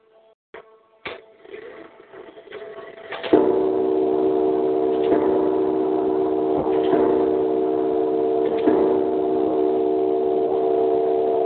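A Skull and Bones grandfather clock, ordered around 1927 from a clockmaker in South Carolina, ticks at a slow, even pace. Its regular clicks sit over a steady mechanical hum that begins after a few scattered knocks and continues fairly loud.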